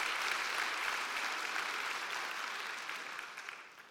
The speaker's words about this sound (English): If y'all are excited, put your hands together. If you're going to clap, let's clap.